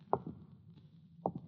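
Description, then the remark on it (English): Someone comes in through a door: two soft, muffled double thumps about a second apart, like heavy steps on entering, quiet against a low background hum, with no voices. “Somebody's coming in the door.”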